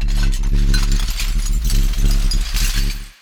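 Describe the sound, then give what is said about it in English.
The Windsor Hum, an unexplained hum heard around Michigan and Windsor, Ontario: a loud, steady low-pitched drone without a break for about three seconds, with a scattered metallic rattling and clinking over it and no voices. “It's known as the Windsor Hum.”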